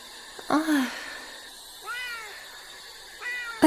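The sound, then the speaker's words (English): A cat meows three times in drawn-out, complaining cries at the noise of a spirit box radio, the first loudest and the others softer, with no talking, over a faint steady background hiss. “See, the cat hates it too.”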